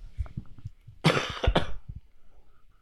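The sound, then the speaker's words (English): Two loud, harsh coughs, one right after the other, forced and deliberate-sounding, with a few low throaty rumbles before and after and no talking. “I feel that Whataburger makes you cough a lot.”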